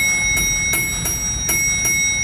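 A bell rings with steady, sustained tones while sharp strikes land in a regular rhythm, about five in two seconds. It sounds fairly loud, with no voices.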